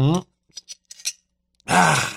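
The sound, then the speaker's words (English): Someone drinks loudly, a short hum followed by four or five quick, wet gulping swallows, then a loud, breathy satisfied exhale at the end. “I'm going to take a very vocal drink for you listening.”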